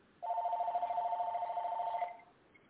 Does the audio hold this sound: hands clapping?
no